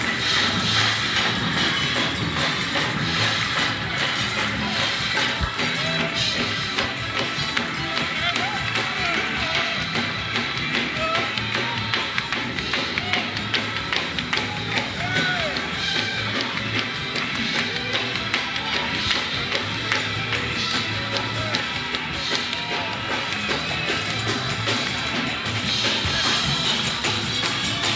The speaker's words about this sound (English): Clap your hands, pat your feet. Clap your hand, pat your feet.